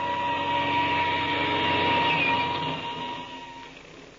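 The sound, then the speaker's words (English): A steady, droning airplane engine, started up for takeoff, roars with a constant pitch, holding level for a few seconds before gradually fading away. No voices are heard. “We've got to be in the air. I'll start the engine. We'll take off.”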